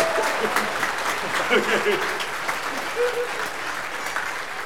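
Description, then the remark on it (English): A church audience claps steadily in sustained, dense applause after a baptism, with scattered voices murmuring and calling out underneath throughout. “I don't know if you're clapping for him or the fact that my pants are now wet.”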